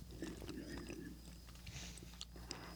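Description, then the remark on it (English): Close-up chewing of candy, with wet, sticky smacks and small crunchy clicks repeating irregularly for a few seconds, loud and right against the microphone. “You're chewing in the mic, sweetheart.”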